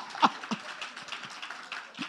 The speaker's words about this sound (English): Thank you. Please clap. Thank you. Thank you. Thank you.